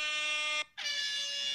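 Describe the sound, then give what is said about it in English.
Two loud, blaring air horn blasts, harsh with rich buzzing harmonics, separated by a brief silent gap, with no talking. “I have a real air horn.”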